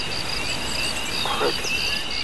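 A steady, high-pitched chorus of crickets trilling continuously in the background, fairly faint and unbroken, with a brief murmur partway through.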